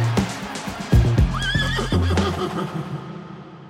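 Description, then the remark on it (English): A horse racing against Olympian Jesse Owens whinnies once, a wavering high neigh lasting under a second, set against low thuds and rumbling that suggest hooves and movement. “How did this Olympian end up racing a horse just a few months after bringing home gold?”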